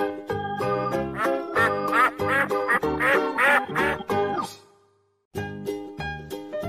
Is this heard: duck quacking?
yes